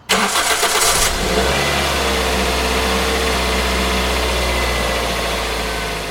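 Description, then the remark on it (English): A car engine cranks over with a brief rattling burst, catches, then settles into a steady, low rumble as it runs and pulls away, the car being driven to take a dog to the vet, with no voices. “I'm a nervous person, and I didn't want to risk anything, so I scooped her up and got her into the car to take her to the vet.”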